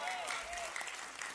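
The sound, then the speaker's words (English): An audience in a church sanctuary claps in a steady, dense burst of applause that fills the whole moment, with a faint sustained tone and murmured voices underneath. “Come on, y'all need to clap for that.”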